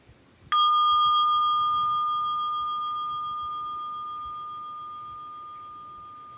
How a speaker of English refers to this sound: And we're just going to take about 10 seconds of silence now to hold that space. And I'll begin that with a chime.